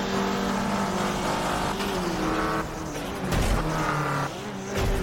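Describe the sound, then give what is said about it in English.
A race car engine roars steadily and loudly throughout, its pitch rising and dipping as it revs and shifts, with a brief tire squeal mixed in; no one speaks. “I think I saw a Mustang. Ooh. I think there's a car.”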